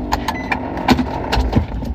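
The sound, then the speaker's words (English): A car engine cranks and catches, its low rumble running steadily beneath a series of sharp mechanical clicks and jingles, with no voices. “I'm going to start the car.”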